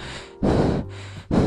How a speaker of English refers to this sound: Her breathing gets faster and she falls down suddenly.